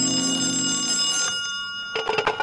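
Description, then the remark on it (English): An old-fashioned telephone bell rings steadily in a Kansas City hotel room for over a second with a bright metallic jangle, then a brief gap before another short burst of ringing begins. “A man in a Kansas City hotel room is packing to make an eastbound train when the telephone rings.”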